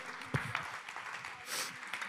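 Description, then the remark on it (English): A church audience claps hands to the Lord, a dense patter of many hands with a few sharper claps standing out, fairly quiet. “Clap your hands to the Lord and love Him.”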